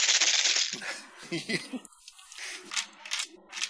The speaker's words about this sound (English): A sudden clatter of battle armor echoes through the tunnel.